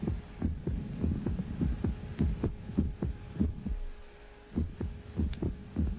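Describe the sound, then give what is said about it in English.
A steady heartbeat thumps in low, muffled pairs, then briefly falls silent as a beat drops out, about every eighth or ninth beat, before the rhythm resumes. A faint hum runs underneath. “When I go to bed at night, I keep myself awake listening to the silence that replaces every eighth or ninth beat of my heart.”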